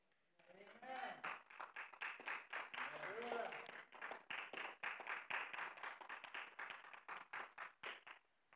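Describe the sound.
Scattered, uneven clapping from an audience, sparse and half-hearted rather than a full ovation, with a few voices murmuring underneath early on before the claps thin out.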